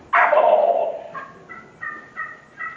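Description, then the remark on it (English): A loud rattling turkey gobble produced on a game call, a rapid rolling burst that trails off into four or five short, evenly spaced clucking notes, with no talking. “When he gobbles, before he gets that last few little notes out, the first thing that he hears is me cutting him off.”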